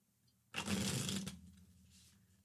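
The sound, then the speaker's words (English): A deck of tarot cards is riffle-shuffled in one quick, dense flurry of papery flutter lasting under a second, then fades to quiet. No one speaks. “You can hear me shuffle, so you can start being able to identify this deck when I know.”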